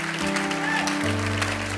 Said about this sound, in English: Come on, let's give the Lord a big hand clap for those decisions. Praise the Lord.